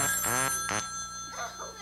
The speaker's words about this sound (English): Oh, it's a phone call. I wonder who could be calling to give me tribute.